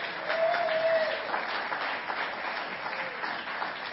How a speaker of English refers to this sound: If you're a family group leader or a small group leader, raise your hand. I want to give a round of applause to these men and women that are here.